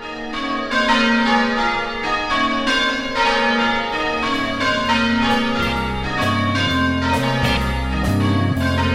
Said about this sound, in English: Now I hear the bells calling me to church.